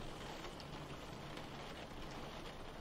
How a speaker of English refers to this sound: In the rain?